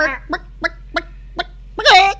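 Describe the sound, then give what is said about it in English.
A person imitates a chicken: a drawn-out vocal cluck, four short evenly spaced clucks, then a louder, stretched squawk to finish, with no other sound. “And they had the one that was a chicken and it would spin and around.”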